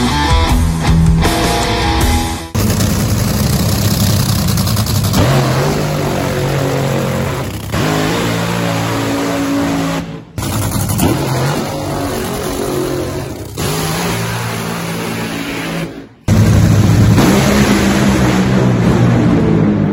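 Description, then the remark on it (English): A brutally loud nitro drag racing car engine of 11,000 horsepower revs and roars continuously, its deep rumble rising and falling in pitch, with a few abrupt cuts between bursts. No one speaks. “Stick with me, check out their experience from the starting line, in the pits, and seeing what it takes to actually run these cars and feeling the power of 11,000 horsepower.”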